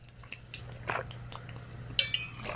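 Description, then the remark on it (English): Someone quietly drinking water: soft gulps and wet mouth sounds in a few short bursts, with a brief brighter clink toward the end, over a low steady hum. “Okay, I'm going to drink some water.”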